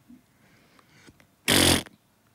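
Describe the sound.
A single loud, buzzy raspberry blown with the lips, a fart imitation lasting about a third of a second, after a stretch of near silence.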